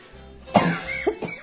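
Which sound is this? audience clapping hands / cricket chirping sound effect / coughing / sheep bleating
coughing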